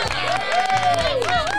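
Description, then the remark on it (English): A crowd cheers and whoops as a guest is welcomed on, with voices sliding up and down over a dense, steady wash of noise that stays loud throughout the short burst. “Oh, the crowds.”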